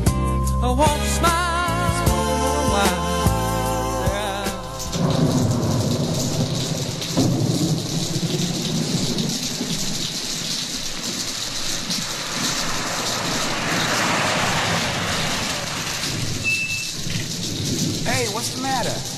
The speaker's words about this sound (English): And I'm afraid all alone out here in the storm. Yeah, it is raining pretty hard.